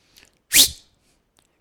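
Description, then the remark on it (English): A person gives a short, breathy whistled signal call: one loud rising blast lasting a fraction of a second, then silence before a second blast begins. “My dad had this thing where he'd whistle.”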